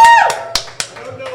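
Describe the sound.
A few scattered claps ring out from a small bar crowd polled on whether they are unhappy with how Game of Thrones is ending, sparse and uneven rather than a full round of applause, with faint voices murmuring underneath.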